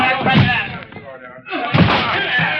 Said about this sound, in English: …, open the door. It's locked, …. All right, everybody, we've got to break that door in.